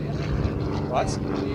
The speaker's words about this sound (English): Quick little airplane. What is that? He is boogieing. Glass air, maybe? I don't know. He's hauling. He is eating him up.